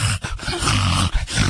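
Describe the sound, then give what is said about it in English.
A dog reverse sneezing: loud, raspy, honking snorts drawn in on the inhale, repeated in quick bursts with brief pauses between them. A low, rumbling, reverberating snort throughout, with no talking. “The reverse sneezing is actually more, instead of it's not a sneeze on the exhale, it's on the inhale.”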